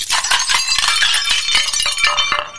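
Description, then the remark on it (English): Glass drops and shatters with a loud crash, followed by a dense spray of tinkling, clinking shards that keeps scattering for a couple of seconds before trailing off. “Everybody's blatant glass drops inside. Oops. That certainly cannot be good.”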